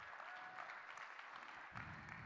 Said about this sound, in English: I'm taking all the claps I can get.